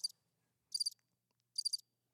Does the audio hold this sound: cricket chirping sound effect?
yes